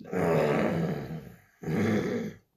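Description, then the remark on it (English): A person growls like an animal in two long, rumbling bursts separated by a brief pause, loud, with a harsh guttural texture and no speech. “Sorry, I'm growling.”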